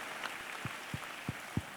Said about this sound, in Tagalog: Isang malakas na palakpak sa Panginoon minsan pa.